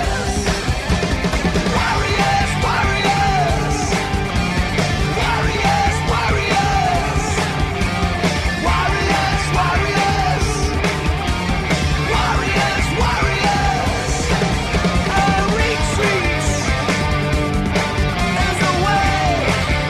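A loud, dense rock song about drone attacks plays throughout, with driving drums, heavy distorted guitars and shouted vocals at a steady, energetic tempo. The volume stays constant and full from start to finish.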